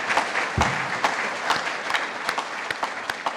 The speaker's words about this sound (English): And on that note, I think that'll do it for our clean mining panel. Unfortunately, we're out of time. A big round of applause, please, for our lovely panelists.